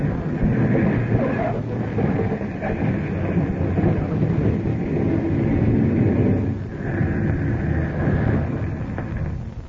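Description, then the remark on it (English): A small airplane touches down on a landing strip, its engine a loud, steady roar over deep rumbling, with a thin whine riding on top and a brief dip midway. “we're coming down to land. Yeah. Hope this plane isn't too big for the landing strip.”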